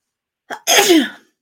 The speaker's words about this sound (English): I'm going to have to excuse me because I'm going to sneeze.